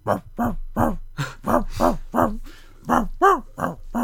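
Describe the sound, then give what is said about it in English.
In the background of a film scene, a dog barks out the tune of Jingle Bells: about a dozen short, pitched barks in a steady, song-like rhythm, the pitch rising and falling like a melody, clear, with no talking. “Because the dog in the background that's barking is barking Jingle Bells.”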